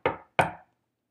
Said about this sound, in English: And I get woken up at 4 in the morning by these really loud knocks. It's always 3 in a row.